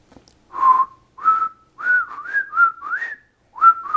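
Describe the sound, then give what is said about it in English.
A person whistles the Harlem Globetrotters theme song alone, a short, bouncy melody of separate notes with small pitch slides, clear, pausing briefly before the final phrase. “My whistle is not working well today.”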